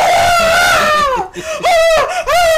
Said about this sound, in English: literally, this is how I was screaming.